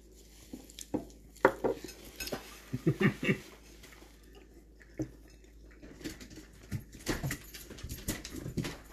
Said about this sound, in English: Somebody else barks and Sadie has to go mad.